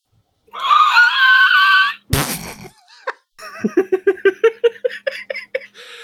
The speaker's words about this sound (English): He's yelling at me again.